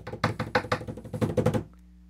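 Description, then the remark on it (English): A quick drum roll tapped out on a desk to announce a gift card winner: a rapid, uneven flurry of loud knocks lasting about a second and a half, then stopping abruptly, leaving only a faint low hum. “So drum roll.”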